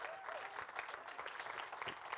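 A church audience claps their hands in a dense, steady round of applause to thank a leader who led prayer partner training, many overlapping claps blending into a continuous crackling wash that holds an even level throughout.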